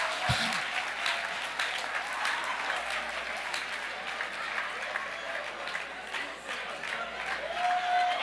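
An audience at an evening church service claps continuously for several seconds, a dense, steady patter of many hands, with no clear voices above it.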